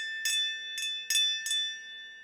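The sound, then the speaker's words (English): A small bell on a safety coffin, set on a tombstone with a string running down to the coffin, is jangled four times in quick, uneven succession, its bright metallic tone ringing on between strikes and lingering after the last. No voices. “They would put a bell, and it would have a string that would run down to the coffin so that if someone were to revive, it would ring.”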